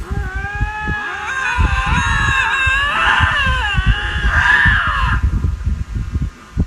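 Two lynx yowl at each other in long, wavering, harmonic wails that rise and fall, loud, with rustling noise underneath and no talking.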